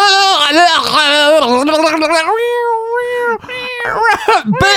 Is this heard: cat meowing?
yes